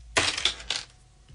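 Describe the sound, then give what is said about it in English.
Five coins of three different kinds rattle in a hand in two quick shakes, a bright metallic jingle that stops abruptly, with no talking over it. “5 coins here in my hand.”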